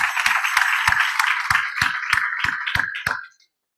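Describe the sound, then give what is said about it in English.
A church audience claps together in a hand clap for the pastor and his wife, a steady wash of applause cut through by sharp, evenly spaced claps about three per second. The clapping stays loud throughout, then stops abruptly. “And so I just want to give the Lord a hand clap for the pastor, his wife, and this great congregation.”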